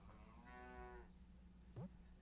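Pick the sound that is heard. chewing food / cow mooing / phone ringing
cow mooing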